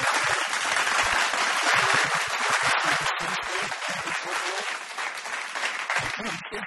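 A sustained round of applause from a crowd for Geelong footballer Johnson, dense and steady clapping at a loud level throughout, with no break or single voice standing out.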